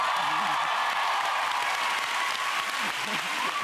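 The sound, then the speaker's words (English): An audience claps on cue after a recitation of chemical element names, steadily and loudly, a dense, continuous wash of applause that holds at an even level for several seconds, with faint voices mixed in underneath. “Now, clap.”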